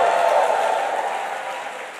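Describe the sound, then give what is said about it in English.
An audience claps and gives the Lord a shout offering in a steady, loud wash of applause and cheering voices that holds for a couple of seconds and eases slightly toward the end. “Clap your hands and give the Lord a shout offering.”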